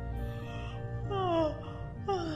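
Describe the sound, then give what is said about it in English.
Two drawn-out yawns, each a voiced, falling moan, the second starting soon after the first ends, clear over a steady low hum. “I can't stop yawning.”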